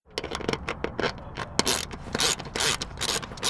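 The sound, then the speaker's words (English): Ratcheting tools clicking and whirring in quick, irregular bursts as walls, floors, doors and other shelter parts are assembled at Washoe County's campsite east of downtown Reno; a bright, metallic rattle that grows louder and denser toward the end, with no voices. “Walls, floors, doors, and other parts are being assembled east of downtown Reno.”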